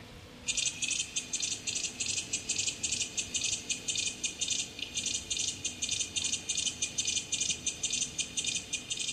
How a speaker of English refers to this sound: Yeah, it was nicknamed the Disco Beat Cicada by David Lane. It clicks a lot more than the chorus and the clapping cicada.